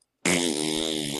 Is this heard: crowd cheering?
no